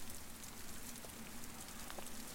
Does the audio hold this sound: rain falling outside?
yes